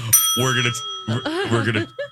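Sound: bell ding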